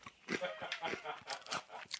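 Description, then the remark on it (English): Crispy Watsits corn snacks being crunched: a series of sharp, dry, irregular crunches with bright crackly texture, several bites in quick succession, fairly loud with no talking over them. “He's pissing quickly because he knows I'm in here smashing the crispy Watsits.”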